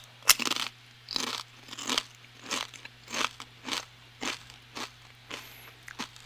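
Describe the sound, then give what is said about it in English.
Steady crunching of crisp chips being chewed, about ten brittle bursts in a regular rhythm over a faint low hum, with no talking. “Yeah, it is crunchy.”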